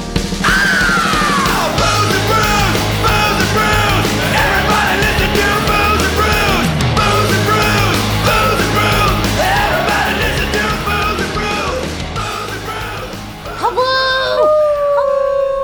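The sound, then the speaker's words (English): A group of people howl together like a wolf pack, their rising and falling voices overlapping loudly and continuously over a low steady hum, ending with a few long, drawn-out howls. “Well, we start off with straight whoos. Yeah. Because we learned why? That a wolf pack, when they howl together, they stay together.”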